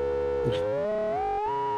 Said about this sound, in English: If I change A to a sine wave. Oh, cool.